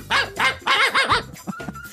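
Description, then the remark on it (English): A dog barks in a rapid run of loud, high-pitched yaps, then a couple of softer, shorter yips trail off at the end. “You know that dog Blue that shows up once an episode here?”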